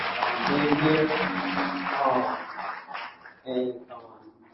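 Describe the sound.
An audience applauds a pastor in a steady burst of clapping, mixed with voices calling out over it, then the clapping thins and fades toward the end.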